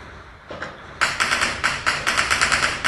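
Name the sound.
gunfire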